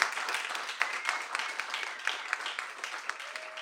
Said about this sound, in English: Okay. Let's applaud.